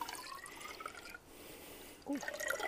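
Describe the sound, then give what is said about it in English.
Rainwater pours out of a narrow glass rain gauge measuring tube, marked with measurements and holding 9.5 millimetres, in a short splashing trickle, then pauses before a second brief gush and dribble, fairly quiet. “Sort of a glass test tube. But it's, measurements on the side. Measurements on the side. So that's 9.5 millimetres. Mm-hmm. Pour that out.”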